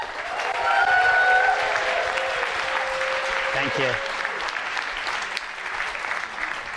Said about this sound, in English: So if we could all give a huge round of applause